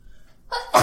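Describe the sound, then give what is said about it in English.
A single loud sneeze: a brief breathy build-up followed by a sharp explosive burst, with no talking around it. “Bless you. I'm sorry.”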